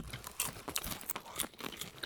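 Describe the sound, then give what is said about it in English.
Crunching of whiskey popcorn being chewed into microphones, with irregular crisp, crackly bursts over about two seconds, fairly quiet and without talking. “Who's ready to hear us crunch popcorn into the microphones?”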